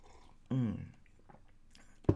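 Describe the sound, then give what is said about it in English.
Someone takes a sip of a drink, with a short burst of wet mouth and swallowing noises, a quiet pause, then another brief gulp-like sound at the end. “Even if you're like me, get a sip.”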